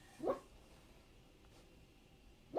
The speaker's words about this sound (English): My dog is literally curled into a ball, barking into her leg.